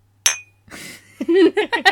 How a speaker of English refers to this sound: Hang on, I'm going to hit something that sounds like a clink. Okay. Clink. Clink.